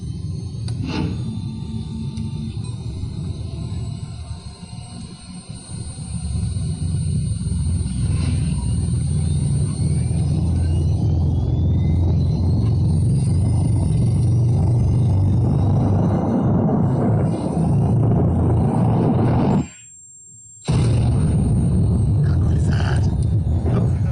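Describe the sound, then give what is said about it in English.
A washing machine drum spins up and speeds along, used as the sound of a drift jump winding up in a tabletop game, with a loud, steady low rumble and faint rising whine, cutting out abruptly for a moment near the end before resuming. “Up sound was the sound of a washing machine getting faster.”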